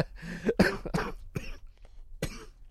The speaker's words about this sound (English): This is called the coughing segment. Yeah, between the two of us here, we're kind of fighting the cold, the cough.